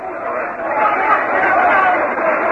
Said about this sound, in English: You'll hear a roar from the crowd.